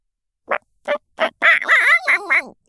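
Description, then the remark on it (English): A person imitates a chicken: three short, evenly spaced clucks followed by a longer, wavering squawk that rises and falls in pitch, with no talking. “Give me something I know. Chicken.”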